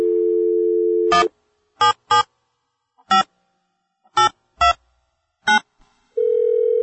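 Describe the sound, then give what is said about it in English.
A steady phone dial tone gives way to seven separate keypad beeps being dialed in an uneven rhythm as a phone call is placed, then a continuous ringing tone begins, clear with no voices. “And he's got some great tales to tell, and we're going to give him a call right now on the phone and talk to him.”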